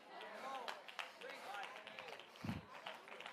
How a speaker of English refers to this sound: That was a golf clap.